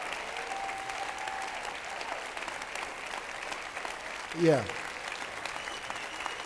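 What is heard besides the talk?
audience applause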